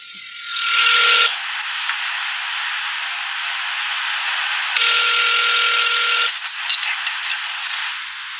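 A telephone ring tone comes through a hissy phone line in two bursts, one short and one longer, separated by a pause, while the caller waits for the call to be picked up, with faint whispering voices of two people talking in the background.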